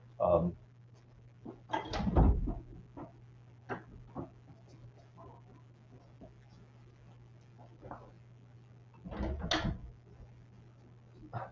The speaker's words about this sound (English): I'm sorry, folks. I'm in a hotel and someone came to the door, actually, and I had to go to the door. Sorry.